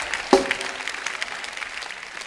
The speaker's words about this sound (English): Whoa, give yourself a clap. Give yourself a clap.